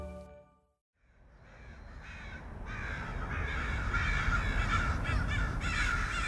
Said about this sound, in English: Chances are good that is a familiar sound. Those would be Corvus brachyrhynchus, a.k.a. crows, are often unwanted urban neighbors. Crows are thought to be loud, pesky, aggressive, even sinister.